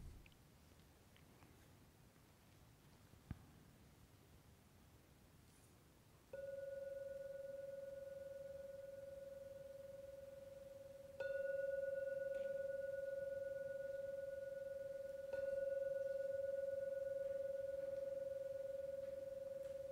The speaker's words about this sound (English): I will now ring the bell 3 times to signal the end of the meditation.